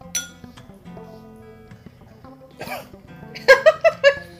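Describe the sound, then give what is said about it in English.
After a light clink of glass, someone coughs after breathing in while taking a sip of high-proof liquor: a short sputter, then a loud burst of about four quick, harsh coughs in a row. “Yeah, I breathed in a little bit as I was taking that sip.”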